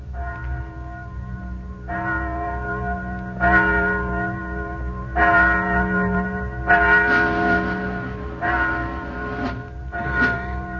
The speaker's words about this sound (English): Listen. Do you hear something? Just a bell. Must be 11 o'clock.